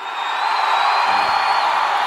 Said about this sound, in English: Thunderous applause, Daniel. Thunderous applause.